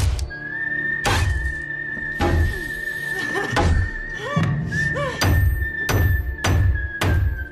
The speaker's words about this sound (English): I hate this part. I absolutely hate it when they're hammering the nails and we are from inside the coffin slowly watching the light disappear.